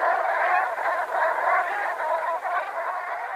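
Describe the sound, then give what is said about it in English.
A flock of Brent Geese chatters softly and continuously, overlapping low honking calls blending into a steady murmur, with no talking over it. “They make this lovely little chattering call as they talk to each other.”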